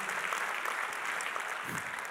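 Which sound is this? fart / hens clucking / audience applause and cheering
audience applause and cheering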